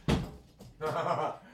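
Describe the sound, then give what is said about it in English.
A dog named Terry, boofing at the door, bumps against it with a single loud thud, followed by a brief pause and then a low, muffled rumbling sound lasting under a second. “Why are you boofing at the door?”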